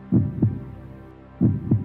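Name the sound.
heartbeat sound effect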